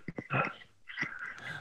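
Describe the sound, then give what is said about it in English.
A short, fairly quiet sneeze bursts out after a couple of quick catching breaths, followed by a brief strained vocal sound as it trails off. No one is talking. “Bless you.”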